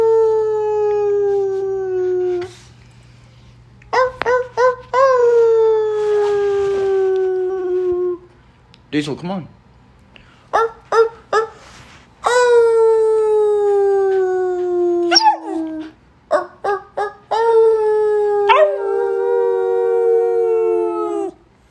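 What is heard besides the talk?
dog howling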